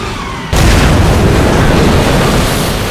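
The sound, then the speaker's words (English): A sudden loud, deep blast erupts after a brief lower rumble, then sustains as a dense, roaring wash of noise like a violent explosion and impact, with no voices: a Helldiver plane diving for the battleship Yamato catches a shellburst, bursts into a fireball and falls into the sea. “Sparks into a fireball and meteors into the sea.”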